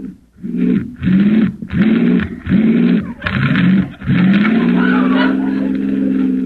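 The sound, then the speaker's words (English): A car engine turns over in five or six loud, rhythmic sputtering bursts, then catches and runs with a steady, sustained roar as it pulls away. “This car doesn't work very well. Start it again.”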